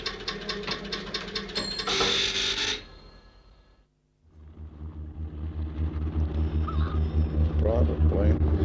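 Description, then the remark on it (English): An airplane engine being run up on the tarmac at Derby Airport, the East Midlands Airport: a steady, deep droning roar with a humming tone that swells gradually louder, following an earlier rattling, hissing burst and a short gap of near silence. “You can hear a plane being run up now.”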